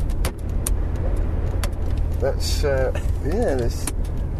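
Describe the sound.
A few sharp, dry plastic cracks and creaks from car interior trim being pushed, over a steady low engine rumble, with a person briefly talking between them.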